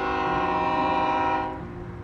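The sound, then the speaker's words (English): A loud, sustained train horn blares with steady tonal harmonics over rumbling rail noise, then fades slightly as the train continues past at the Englewood rail yard. “Two blocks from Mr.'s home, the street dead ends into the Englewood rail yard.”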